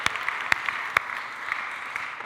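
A room full of people applauding together, a steady dense patter of clapping with a few sharper, louder claps standing out, sustained throughout at moderate volume with no voices.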